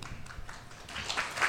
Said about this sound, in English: We don't actually have to clap after everyone, but it's nice.